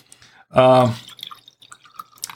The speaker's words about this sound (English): I'm going to refill the glass, get ready for this toast. Everybody get your glasses ready.